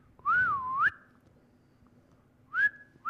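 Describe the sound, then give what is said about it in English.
A person whistles in imitation of a parrot heard through a paper-thin wall from another apartment: a clear swooping whistle that dips and rises, a silent pause, then a shorter upward whistle. No talking. “And then there's like a parrot or something in like a paper-thin wall in some other apartment, and it's going...”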